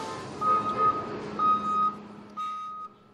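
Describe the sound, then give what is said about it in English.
A school bus backs up at the Anchorage School District's transportation depot in Anchorage, Alaska, where it is inspected on a weekday morning, its reversing alarm sounding in three steady bursts of high, shrill beeps over a low engine rumble, with no one talking. “Every weekday morning around 6:30 a.m., Michael Herzog inspects a school bus at the Anchorage School District's transportation depot.”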